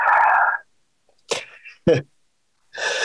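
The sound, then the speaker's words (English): A stifled, muffled sneeze in two short bursts, a breathy catch followed by a sharp compressed puff, set between stretches of talking. “Sorry, I was suppressing a sneeze.”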